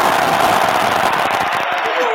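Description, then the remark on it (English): A crowd-cheering sound effect: a loud, steady roar of many voices with scattered claps, holding for about two seconds before thinning slightly at the end. “The crowd goes wild!”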